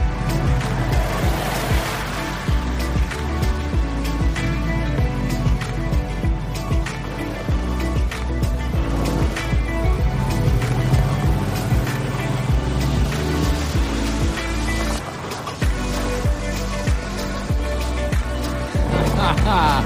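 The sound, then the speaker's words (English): Off-road trucks and four-wheel drives rev their engines steadily and loudly for the whole stretch as one tries to get another out, the motor note rising and falling as they strain, with indistinct voices mixed in underneath. “And a bunch of trucks and four-wheel drives. One's trying to get the other one out.”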